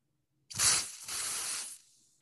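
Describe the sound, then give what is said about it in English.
An aerosol can, shaken first, sprays foam in two bursts, a short hiss followed by a longer steady one that tapers off, loud with no talking. “But, you basically shake the can. It's like an aerosol. Yeah. It sounds can. Like a spray paint can.”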